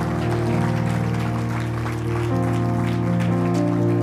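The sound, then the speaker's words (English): A church audience at Remnant Church claps continuously in praise during a morning service, a dense, steady wash of applause heard over sustained, chord-like musical tones that hold underneath at a fairly loud, even level throughout. “Come on, can you give the Lord one more hand clap of praise this morning?”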